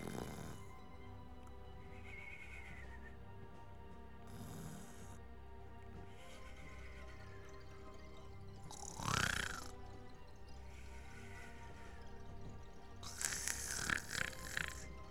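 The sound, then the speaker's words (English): A voice imitates snoring while pretending to sleep: four drawn-out, rasping snores at slow, even intervals, the last one longer and noisier, with no talking. “The man crept into my compartment, looking towards me, listening to my convincing snoring.”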